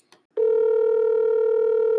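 A phone call connecting: a brief click, then a loud, steady electronic tone that holds without a break, with no voices.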